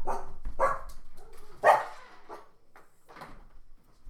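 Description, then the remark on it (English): The speaker's dog Peanut barks several times in short, irregular bursts, with one louder, sharper bark standing out. No talking over it. “And there is Peanut that always loves to be a part of my podcast.”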